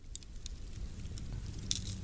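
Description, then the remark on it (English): A campfire crackles steadily, with a couple of sharp pops standing out above a soft, continuous low rumble; fairly quiet, with no voices. “so we just did a more ASMR approach to it, added some music, a campfire sound, and told you a little bit about them.”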